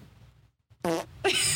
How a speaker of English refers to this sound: I think that's like fart.